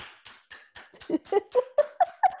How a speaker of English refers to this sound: I like this. We should keep up. Okay. Every time we just clap now.